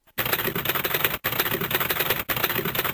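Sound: typewriter typing sound effect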